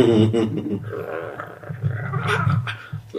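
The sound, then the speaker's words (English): A person makes low, growly wolf-like vocal sounds, imitating wolf language to speak calming words to wolves. It is a rumbling throaty voice with wavering harmonic tones, sustained for a few seconds without words. “I'm going to slowly approach them and say calming words in my in what I remember of my wolf tongue.”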